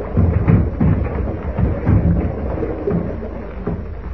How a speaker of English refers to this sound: And meanwhile, on shore, another danger threatens the storm-tossed Juanita. Seeking protection from the hurricane's fury in the lee of a huge mass of rock is the villainous Pete Escobar.